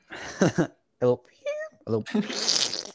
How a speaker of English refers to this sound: Why did I laugh like that? I made a little fart noise.